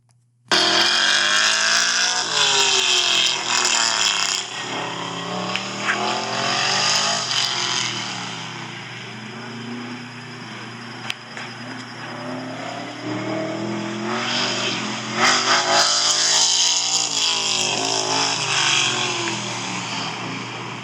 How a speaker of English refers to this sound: I think it was the only big block in the entire competition over there at the autocross